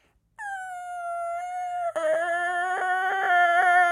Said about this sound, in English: And it gets louder and louder and louder, and it's this shrieking, breaking train. And by the time he's 10 feet from him, it crescendos.